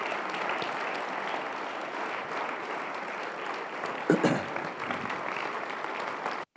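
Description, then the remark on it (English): A church audience applauds steadily, a dense wash of many hands clapping at an even level, with a brief louder burst near the end before it cuts off. “Let's give them a great clap, shall we?”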